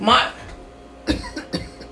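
A person coughs: a rough burst at the start, then three short, sharp coughs in quick succession, loud and throaty.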